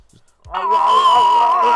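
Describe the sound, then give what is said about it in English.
Arnie (Arnold Schwarzenegger) lets out a loud, sustained scream at the start of a movie, after falling down a mountain and his helmet's face breaking; it bursts in after a brief silence and holds at a steady, strained pitch for over a second. “Which basically, this movie starts with a patented Arnie scream.”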